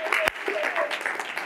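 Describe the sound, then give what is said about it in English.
A church audience clapping their hands to rejoice in the Lord in a steady, dense patter, with voices calling out faintly beneath it and one sharper, louder hit near the start. “Oh, somebody clap your hand and rejoice in the Lord today.”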